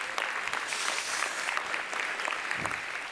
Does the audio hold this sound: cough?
no